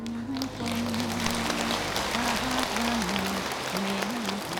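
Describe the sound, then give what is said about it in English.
Continuous clapping fills the whole stretch, a dense, steady patter of many quick hand claps at moderate loudness, with a low wavering tone, like a hummed voice, running underneath. “I hear you clapping a little bit.”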